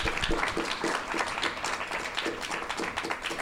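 A crowd applauds steadily, a dense patter of many hands clapping at an even, fairly loud level throughout, with no clear voices on top.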